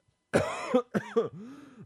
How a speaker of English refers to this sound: Sorry. Once you start coughing, you can't stop.